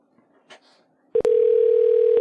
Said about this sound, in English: We'll find out if they answer the phone, if I'm dialing the right number.